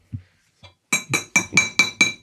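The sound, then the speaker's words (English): A fork taps a plate six times in a quick, steady rhythm, each strike a bright ringing clink, after two soft dull knocks. No one speaks. “No, that was a fork on a plate.”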